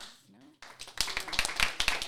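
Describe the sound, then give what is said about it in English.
A quick burst of hand claps, a dozen or so sharp slaps in a quick uneven run, following a brief murmur of voice at the start. “I gotta get claps for that.”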